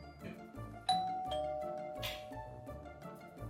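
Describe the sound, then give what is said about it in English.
A doorbell sounds once as a Northside Delivery courier arrives with packages, its bright chime ringing out sharply and lingering as it fades, over a quieter backdrop of rhythmic background music. “Doorbell.”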